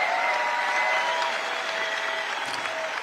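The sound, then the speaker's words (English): A large crowd at CPAC claps and cheers loudly after a speech by Donald Trump, a dense, continuous wash of applause with whistles and shouts cutting through, sustained for the full few seconds. “And the crowd went wild.”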